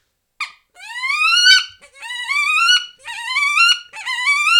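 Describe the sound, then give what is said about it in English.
A hen wood duck call, imitated: four rising, high-pitched squealing whistles, each about a second long with a brief pause between, loud and clear with no talking over them. “That's a hen wood duck right there.”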